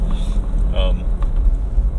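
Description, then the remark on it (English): Steady low road rumble fills the inside of a moving car, with a brief muffled voice-like sound near the middle and faint scattered knocks of things rattling around under the drone. “So there's going to be some car noises and things rattling around, hopefully not too bad.”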